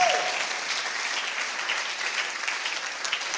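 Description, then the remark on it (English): An audience applauds steadily for several seconds, a dense, even wash of many hands clapping at once with no voices standing out. “I didn't say clap, so please clap well.”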